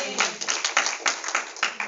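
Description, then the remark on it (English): An audience claps their hands together for God in a dense, steady burst of many overlapping claps, fairly loud, sustained for the whole moment with a rough, rhythmic pulse. “Give God a good hand clap for what he's done for you in the good times.”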